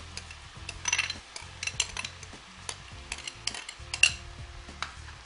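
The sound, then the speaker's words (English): Tomatoes are tipped into a sizzling pot of vegetarian chili and stirred, with a steady hiss of frying under repeated scraping and clinks of a utensil against the pan. No one speaks. “So in go the tomatoes.”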